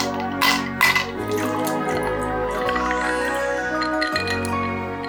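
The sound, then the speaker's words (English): A couple of sharp clinks as the lid comes off a bottle of Drury 173 London Dry Gin, opened with a tonic screwdriver, then a steady gurgling pour into a glass, its ringing tone rising as the glass fills. No one speaks. “So I shall whip out the tonic screwdriver and get the lid off.”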